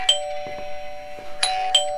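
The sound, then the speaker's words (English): A doorbell rings with bright chiming strikes, one at the start and two more close together near the end, its tones lingering steadily in between. No one speaks. “Oh, there actually is somebody at the door.”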